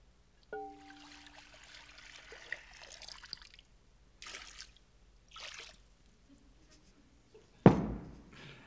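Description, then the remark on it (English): Water trickles and splashes into a basin in several short pours, opening with a faint clink and ending in a louder splash. No one speaks. “So he got up from the table, and he took off his robe, and he wrapped a towel around his waist, and he poured water into a basin.”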